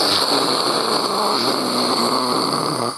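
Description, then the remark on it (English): A crowd of voices imitates an explosion with a loud, rushing, breathy roar that holds steady for about three seconds before cutting off abruptly. “If you want, go ahead and make an explosive sound here.”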